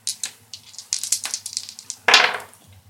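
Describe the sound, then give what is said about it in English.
Dice rattle in a quick, irregular flurry of light clicks, then tumble onto a surface in a louder clattering burst that fades. No one speaks. “These dice suck.”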